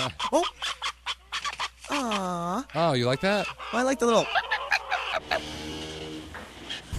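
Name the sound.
chicken clucking sound effect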